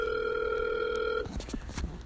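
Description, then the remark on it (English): A phone's outgoing ringback tone after dialing a random phone number sounds once as a steady electronic burst lasting about a second, then cuts off, leaving faint line noise and muffled rustling. “I just did a random phone number, so let's see if my girl …”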